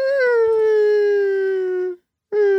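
A dog, Zoe, howling when something is played, lets out a long, loud, drawn-out howl that sags slightly in pitch, breaks off briefly, then starts another howl.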